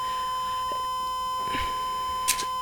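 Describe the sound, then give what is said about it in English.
A steady electronic alarm tone drones on without pause, with a few brief clunks and rustles breaking through near the middle and end. No one speaks. “I can't turn off an alarm without your customer ID number, sir.”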